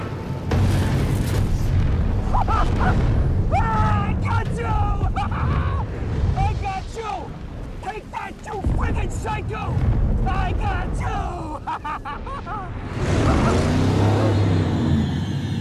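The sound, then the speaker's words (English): The roaring engine of a muscle car, the Batmobile built on a Camaro chassis and body frame, revs and surges as it flies through flames during a car chase, with heavy, rumbling explosion booms, loud, and indistinct voices mixed into the dense, chaotic din. “And the Batmobile just flies through the flame.”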